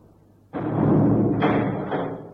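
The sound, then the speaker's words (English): A heavy stone door, the dragon's mouth of an inner temple, slams shut with a sudden loud impact, closing people in, followed by a deep, sustained grinding rumble and two further dull thuds as it settles, with no voices. “Hey, the dragon's mouth, it's closed us in. It's only shut.”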